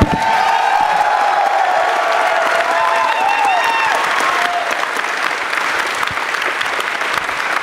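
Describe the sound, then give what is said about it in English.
A crowd of hundreds of fans at PlayStation Experience applauds loudly and steadily, a dense wash of clapping with a few cheers and whoops rising above it, lasting several seconds without letting up. “I want a round of applause if PlayStation Experience has been way more than you expected it to be.”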